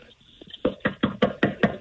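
Six hard, rapid knocks on a door at a secret location, knocking to bring a contest winner to the door. They come in a quick, even rhythm, each a sharp loud thud with a bit of ring, following a brief stretch of faint, quiet sound.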